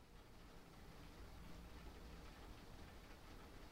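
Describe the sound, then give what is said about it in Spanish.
Soft, steady rain falling outside in London, a continuous even hiss with no distinct drops or pauses, fairly faint, with no one talking. “Mira, quedémonos en silencio un segundo para que escuchen con atención la lluvia.”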